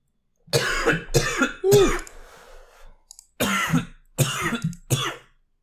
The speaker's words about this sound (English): Why am I coughing so much?